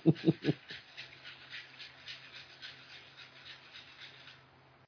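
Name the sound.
dog barking and panting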